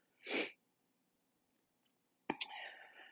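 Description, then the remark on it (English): A single sharp, breathy sniff bursts out, then a pause of near silence before another abrupt, noisy sound starts and trails on. “Yes, I'm still sniffling, as I always do, always.”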